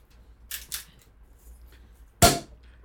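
Two short, hissy bursts are followed by a pause, then a single loud, sharp pop as a bottle is opened, with no talking.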